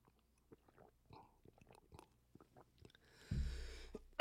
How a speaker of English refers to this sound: Oh, sorry about that. Once again, another water break there.